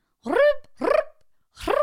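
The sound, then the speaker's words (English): A voice mimics a phone ringing with three short, loud, buzzy vocal bursts, each sliding upward in pitch, separated by brief pauses. “Why didn't you just say the phone rings? I had to do sound effects.”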